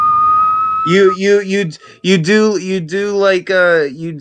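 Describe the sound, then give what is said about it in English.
A single steady whistled note, demonstrating how a pan flute is blown without a pan flute present, holds for just under a second, then a voice takes over with wavering, voiced tones that rise and fall without clear words. “It's kind of like the beginning of whistling into it, but you don't actually whistle into it.”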